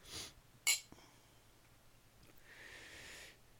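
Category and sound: household object, glasses clinking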